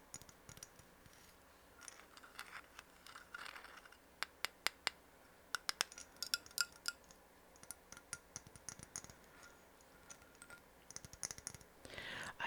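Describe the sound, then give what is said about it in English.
Quiet handling of a small glass container of frankincense essential oil: scattered light clicks and taps at an irregular pace, with a brief cluster of sharper clinks near the end. “I have it in this glass container.”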